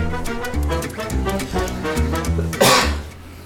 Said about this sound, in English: We'll keep that cough in.